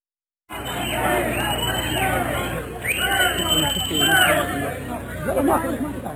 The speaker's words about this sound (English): Here's a little bit of the sound of the chaos after all the announcements were made this morning, I think before the horses got back.